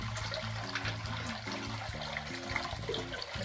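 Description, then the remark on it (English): Water runs steadily into a sink with the plug in, filling it, a continuous rushing and gurgling with a low churning hum underneath, lasting throughout with no voices. “Put the plug in and fill the sink, and then you can mix the water and wash your hands.”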